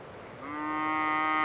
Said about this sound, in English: Those are my cows, 200 breeding herds. McCandless Ranch has 200 cows living on about 2,600 acres. This is the breeding herd, who produce offspring with McCandless's bulls.